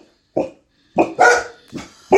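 animal, dogs barking

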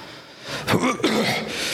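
human body sound, coughing

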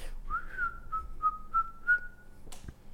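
human body sound, person whistling

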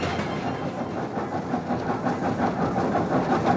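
vehicle, moving train on rails

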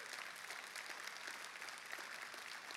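crowd, audience applauding

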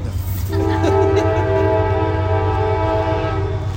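vehicle, train passing with horn

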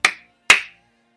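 crowd, clapping

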